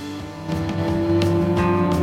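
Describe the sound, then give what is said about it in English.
An electric guitar played to imitate a car, with a steady droning tone, harmonic layers and swelling, revving bursts that grow louder partway through. No one speaks. “Yeah, there's the car sound on the guitar.”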